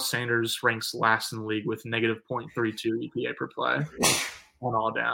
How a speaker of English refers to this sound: Bless you. I forgot to mute myself that time.